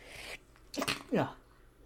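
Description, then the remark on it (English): A person makes two small, high, cat-like sneezes in quick succession, fairly soft, with a brief pause between them and quiet background noise around. “That was two sneezes, if you don't know, guys.”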